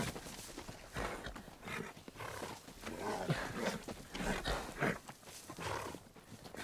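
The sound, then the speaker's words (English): Wild horses that have been caught but not broken make a restless, continuous commotion of snorts and rough calls with bursts of stamping, loud, with no one talking. “Wild horses, huh? See, we catch, but not break them. They're very wild.”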